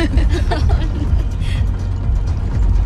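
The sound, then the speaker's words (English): A classic old car engine rumbles steadily with a low, continuous purr, some faint voice-like sounds mixed over the drone. “Listen to that purr.”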